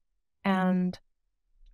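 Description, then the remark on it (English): A single sharp mechanical key click from a small single-key mechanical keyboard stim toy, right after a short hummed vocal sound; then near silence. “And this is one of my new favorite stim toys. Because we're talking about a little mechanical keyboard. Yes. Just single key.”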